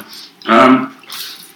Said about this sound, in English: It's an interesting noise from the dog. I'm going to check on it.